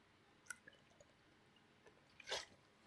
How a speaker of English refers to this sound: So, sorry, let me have a quick drink of water before we roll into our reading.